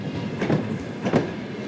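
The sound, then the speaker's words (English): A train rumbles steadily as it arrives at a station in Slovyansk, Ukraine, low and continuous, with two brief rising swells of rolling wheel noise and faint clatter. No voices are heard. “At the station, the next train of love arrives.”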